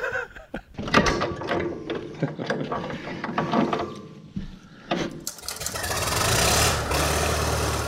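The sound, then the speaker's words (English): Keys for a 1937 Farmall F30 tractor in Western Pennsylvania are handled, a run of metallic clicks and rattles over several seconds, then a steady, broad mechanical rumble takes over for the last few seconds. “Oh, there's the keys right here.”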